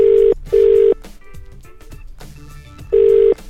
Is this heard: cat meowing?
no